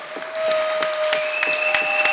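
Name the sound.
audience clapping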